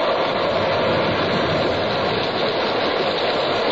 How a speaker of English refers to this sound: By evening, the Pequod, torn of her canvas and bare poles, struggled as sky and sea roared. The disabled mass fluttering with the rags of canvas left by the first fury of the tempest.